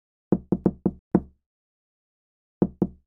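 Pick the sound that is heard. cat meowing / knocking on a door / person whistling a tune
knocking on a door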